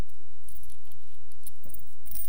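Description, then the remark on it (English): Coins jingle and clink together in a hand, a few short bright metallic rattles spread over a couple of seconds, moderately loud, with no talking. “So I got my coins.”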